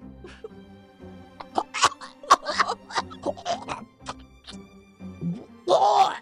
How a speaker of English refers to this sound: You hear like a slurping of a liquid and then like a cough that sprays.